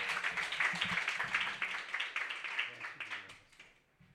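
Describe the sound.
A crowd applauds to welcome a performer to the stage, with dense, steady clapping that tapers off toward the end, with faint voices murmuring underneath.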